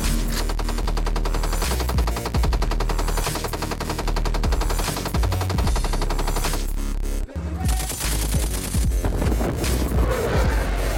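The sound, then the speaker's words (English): Sustained automatic gunfire as PJs in helicopters fire on gun trucks, rattling in rapid, dense bursts over a steady low engine-like drone, with a brief break partway through before the heavy firing resumes. No one speaks. “I don't know if you can tell, they're smoking some gun trucks. You see the rounds bouncing out?”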